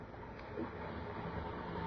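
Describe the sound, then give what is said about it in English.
Railway station platform ambience at Newcastle Station, a few minutes before a train departs: a steady, low rumbling bed of background noise with a faint hiss, fairly quiet and even throughout, with no distinct voices. “But there was no stain on it that morning of May the 20th, 1930, when the two men, one wearing this particular shoe, walked along the platform at Newcastle Station. It was a few minutes before train time.”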